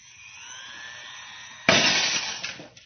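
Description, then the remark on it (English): A rising high-pitched whine builds, then a drinking glass on the edge of a table, targeted by a small, compact machine, suddenly shatters with a loud, bright crash, followed by tinkling shards scattering and fading out. No one speaks. “It's amazing. The glass was shattered.”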